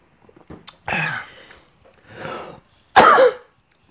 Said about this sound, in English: I cough, so what do you want me to tell you, okay?